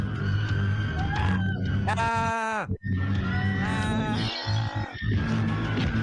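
A crowd in a film scene shrieks and wails continuously at high pitch as a man pulls out a gun, loud throughout, with one long, piercing scream rising above the din partway through before the frantic screaming carries on.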